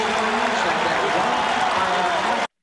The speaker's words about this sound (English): The crowd doesn't even sound that loud. It could have been like 100 people. It could have been, you know, the audio equipment at the time.